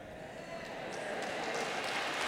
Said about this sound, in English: That's food getting a round of applause, you know.